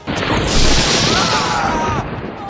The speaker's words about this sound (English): Oh! We've been struck by lightning!